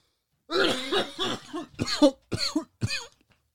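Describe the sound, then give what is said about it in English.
A fit of harsh coughing after taking a hit from a rig: a long raspy, throaty hack followed by three shorter, forceful coughs in quick succession, then quiet. “It always makes me cough like that too.”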